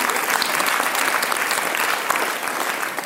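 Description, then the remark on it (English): An audience claps steadily, a dense, sustained wash of many hands at a fairly loud, even level throughout, with no voices standing out. “Round of applause.”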